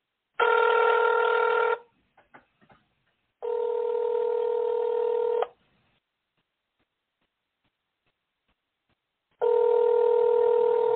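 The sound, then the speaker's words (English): A telephone call is placed to a caller on a regular phone and goes unanswered, ringing in three long, steady electronic tones separated by pauses, with a few faint clicks from dialing after the first ring; no one speaks. “I'm pretty sure I'm putting the number in right.”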